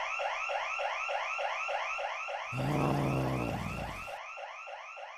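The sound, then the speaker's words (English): A museum alarm, set off when an intruder is detected, wails steadily in rapid, repeating up-and-down sweeps, with a harsher, louder blaring tone cutting in through the middle before the cycling whoop carries on alone. “He was detected, and the alarm went off.”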